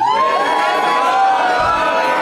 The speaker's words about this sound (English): There's a lady in the audience, wrong reaction, just screaming. It's a very specific cue.